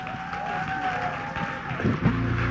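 A crowd in Ghana breaks into steady, dense applause and cheering on Christmas Day as a gospel singer is welcomed, holding throughout, with a sustained musical tone underneath and some voices mixed into the noise.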